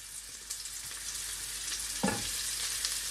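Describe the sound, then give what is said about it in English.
Steady sizzling of shallots, garlic and ginger frying in a hot pan, a continuous bright crackle with a brief stir or clatter near the middle; no one speaks. “I always love hearing that sizzle in the pan.”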